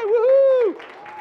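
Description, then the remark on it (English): A drawn-out vocal shout gives way to soft, scattered audience clapping that carries on in the background, fainter than the voice, as the audience claps at an invitation to a daughter's 16th birthday party. “Well, hold on, you're clapping now, you ain't heard the rest of the invite.”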